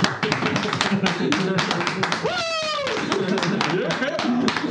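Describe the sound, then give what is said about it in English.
Four people clap hands steadily and unevenly throughout, the sharp slaps overlapping, while a brief high vocal whoop rises over the applause midway. “Those four of us, let's all do the clapping.”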